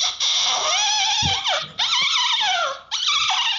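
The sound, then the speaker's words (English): A wavering, high-pitched vocal wail made with a hand cupped over the mouth, in three long swooping phrases with short breaks, resembling a whining dog's howl. No words are spoken. “I didn't know what to put, so I stuck my hand up to my mouth and I went like this.”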